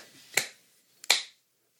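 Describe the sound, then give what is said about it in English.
A giant coin is flipped and lands, giving two sharp metallic clinks about three-quarters of a second apart, each followed by a short, bright ringing tail, with no voices. “Flip that giant piece of money.”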